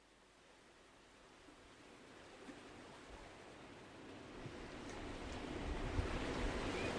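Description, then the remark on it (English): Ocean waves breaking on the beach at Silver Strand, a continuous hissing roar of surf that steadily swells louder over several seconds, with no voices present. “Just arrived at Silver Strand.”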